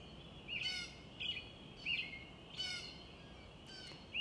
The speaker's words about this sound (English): Aren't the morning songbirds beautiful? You can hear them singing. You can hear the gentle wind in the trees. I love waking up to the sound of the songbirds.